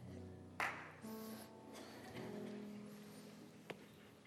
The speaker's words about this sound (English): A single hand clap right before we get started. I hope that's enthusiasm.